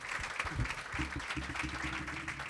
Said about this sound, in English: Round of applause